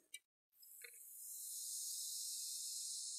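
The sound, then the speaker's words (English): A brief click, then a steady high hiss of carbonated Diet Coke fizzing, building over the first second and holding constant to the end, with no talking. “Wait, hear the fizz.”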